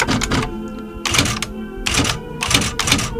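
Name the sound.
typewriter typing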